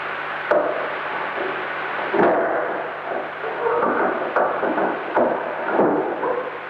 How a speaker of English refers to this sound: At about 4:15 in the morning, we recorded the sound of the door being opened again. Although this was similar to the previous one, it lacked the squeak of the bolt.